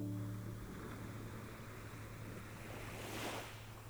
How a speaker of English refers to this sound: And the sound of the waves activates the parasympathetic nervous system, which promotes relaxation.